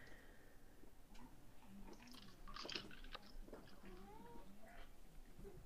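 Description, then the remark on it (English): A cat, Mittens, gives a few soft, drawn-out meows while playing with a dog that steps on it, mixed with crisp crunching and chewing noises, all fairly quiet with no one speaking. “He kind of just like steps on Mittens and Mittens goes meow.”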